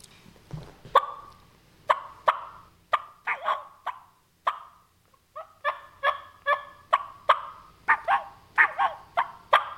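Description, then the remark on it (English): Soft turkey calling imitating a content, feeding turkey: bubble clucks repeat in quick, uneven bursts, mixed with short rising and falling whines. No one speaks. “So I like your bubble clucks, your really light stuff, and then your whines.”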